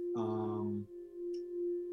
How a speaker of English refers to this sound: If I turn it like a quarter turn, then it can make another tone about maybe with a 5 cent difference or so. If I turn it just the right position, you can actually get both tones, and there's, and it, again, it sets up a beat frequency.